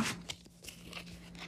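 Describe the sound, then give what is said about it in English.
A deck of tarot cards being shuffled for a full moon reading, a run of soft papery crunches and rustles with a few sharper flicks, no voices. “Let's give these babies a shuffle.”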